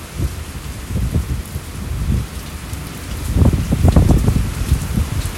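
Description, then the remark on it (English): Steady rain hisses throughout while low, rolling rumbles of thunder build and swell, growing heavier toward the end; no voices are present. “When the world decides to rain fear and lightning and thunder, so it shall.”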